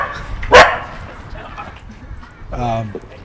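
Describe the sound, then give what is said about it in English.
A dog gives a sharp, loud bark, then a second, longer and more tonal bark-yelp about two seconds later, against a quiet background. “Wait for these dogs.”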